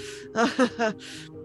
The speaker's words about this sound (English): He's breathing a little more heavily as he's looking at this stuff.